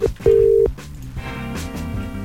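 A radio show's morning phone call at 7:36, which goes unanswered: a quick beep, then a longer steady electronic tone, loud, followed by music-like background sound continuing after the tone stops. No one speaks.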